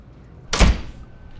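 A train door slides shut with a single quick, heavy whoosh ending in a solid thunk, loud, then a quiet hum lingers.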